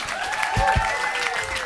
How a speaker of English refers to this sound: Please give a round of applause to my wonderful panel.